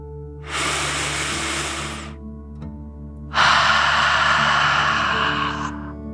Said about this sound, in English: Before we begin our story, let's relax by taking a deep dragon breath. Breathe in through your nose, filling up your lungs, and then out through your mouth, imagining you are breathing fire like a dragon. Ready? Deep breath in and out.